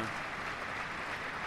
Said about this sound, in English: They're just applauding this podcast at the moment. They're quite happy with how it's gone, and I think they're easily impressed. Actually, it's the Celtic fans applauding.